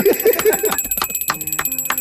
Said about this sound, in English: Ring that bell for ….